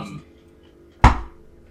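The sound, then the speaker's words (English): A tree falls with one sudden, loud bang: a sharp crack followed by a low, rumbling thud that fades within half a second. It is preceded by near quiet. “And you look to where the noise came from and you see a tree has just fallen over.”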